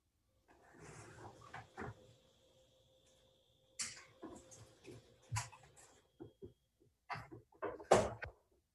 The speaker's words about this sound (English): Is there something going on and off that's giving like a wee kind of sound? Yeah. Yeah. Do you have a refrigerator?